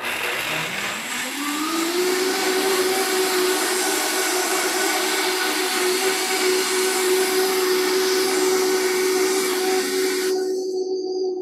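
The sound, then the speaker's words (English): A blender motor whirs up over about two seconds to a steady, loud high-pitched whine with a rough churning roar, blending half a cup of soaked cashews with half a cup of water without pause before the top end suddenly drops away near the end. “So let's just blend these. We're going to just blend these for a minute.”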